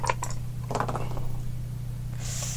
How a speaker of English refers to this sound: Not good. That's a 6. Oh, man, why is this going tits up? Because it's us. Yeah. Because we had to roll dice, didn't we?